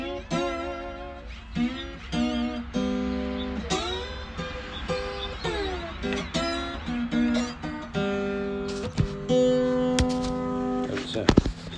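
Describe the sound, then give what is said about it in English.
Guitar played with a glass slide: a run of ringing, sustained notes whose pitch swoops and glides up and down between steady tones, moderately loud throughout with no talking. “You can hear it's glass.”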